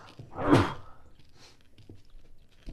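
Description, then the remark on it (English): A single loud, explosive sneeze bursts out near the start, then quiet follows with only faint scattered rustles and small taps. “Someone fucking bless me right now.”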